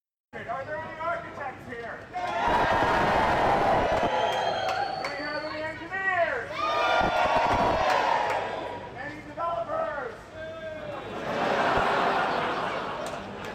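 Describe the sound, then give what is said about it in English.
A large crowd of more than 100 people at the Building Centre chatters continuously, with many overlapping voices forming a loud, dense babble, occasional laughter rising and falling throughout. “Great, so next on our quick whip round here at the building centre, where the crowd has literally mounted to definitely more than 100 people,”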